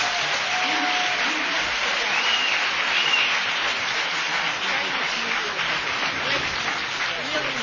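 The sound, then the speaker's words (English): A crowd applauds a panel of officers from the California Department of Corrections and Rehabilitation and the U.S. Federal Probation Department, a dense, even wash of clapping that holds at a fairly loud level for several seconds without fading. “Can we have a round of applause for our panelists?”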